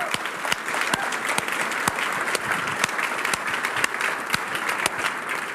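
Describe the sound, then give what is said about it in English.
An audience applauds steadily, a dense wash of many hands clapping at an even loudness, with sharper individual claps popping out of the crackling mass throughout. “I think that Jesus deserves a round of applause for that.”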